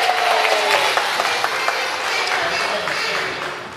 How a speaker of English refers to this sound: round of applause is okay, but, you know, for this to work, for our nativity to really take off, we need a bit of practice.